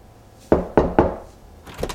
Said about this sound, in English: After the knock, can you add in a door opening sound?